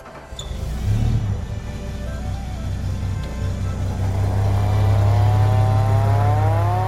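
A vintage 1929 American fire truck engine rumbles steadily, its deep, throaty drone building and rising in pitch toward the end as it revs and pulls away. No voices.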